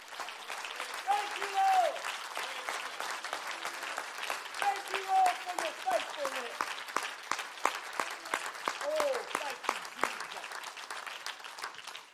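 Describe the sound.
An audience claps steadily for several seconds in praise of God, a dense rattle of many hands, while voices call out and speak over the applause.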